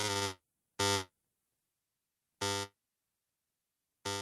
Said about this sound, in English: Whoa, Jonah, your Skype is buzzing at us. Sorry, I virused it.